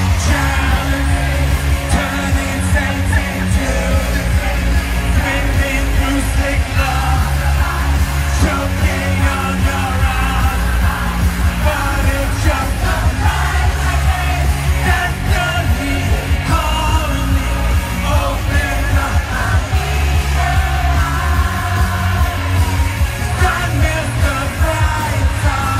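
A large crowd at a concert intermission sings along with Jimmy Fallon and his boombox, loud and steady for the whole stretch, a dense wall of voices with scattered yells and whoops rising out of it.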